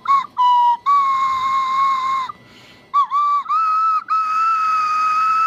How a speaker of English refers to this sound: It just needed more slide whistle, and I think I would have been.